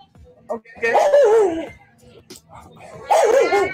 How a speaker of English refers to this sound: Okay. See, the dog know he ain't shit. That dog know he ain't shit. That's why the dog barking at him.